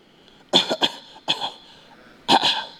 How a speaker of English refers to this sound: I have a little cough.